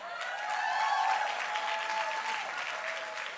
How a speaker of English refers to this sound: When they get done sharing, I want you to cheer like something amazing just happened because it did.